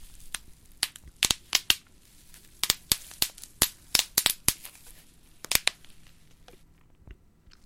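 Protective bubble wrap from a package popping in a quick, irregular series of sharp, bright snaps, some in rapid clusters and a few single pops, with soft crinkling between them and no voices.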